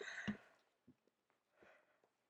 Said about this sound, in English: Oh, my God. I'm so sorry, guys. I am yawning.